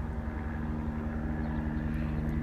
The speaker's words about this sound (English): A lot of times, you know, they call them ghetto birds out here in Los Angeles. They call them ghetto birds. The helicopters. And helicopters are floating around towns. We got a lot of helicopters that float around